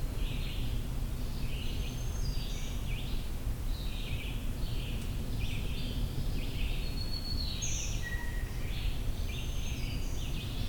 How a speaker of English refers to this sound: The dee-dee-dee-doo-dee, that's the black-throated green warbler.